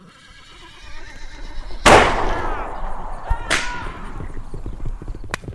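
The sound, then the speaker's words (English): Horses whinny loudly and shrilly, with sharp sudden bursts at the start of each cry, while hoofbeats clatter underneath and then fade as men run to their horses and gallop off. “But they've thrown Osgood towards the fire and started running to their horses.”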